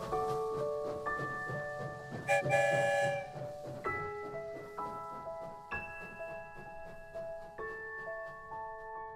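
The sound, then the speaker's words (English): A train sound effect: sustained, shifting whistle-like tones ring out over a steady low rumble, fairly loud, with a brief burst of hiss partway through. No one speaks. “The story train is always on its way to somewhere far, far away.”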